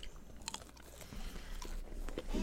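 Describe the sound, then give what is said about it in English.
Someone bites into and chews cold chicken nuggets: a few soft, crunchy bites at irregular intervals, followed by steady, moist chewing. Quiet overall, with no talking. “These nuggets are fucking cold.”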